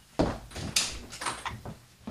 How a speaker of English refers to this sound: Oh, could you hang on for a minute? I heard some knocking. All right, hang on.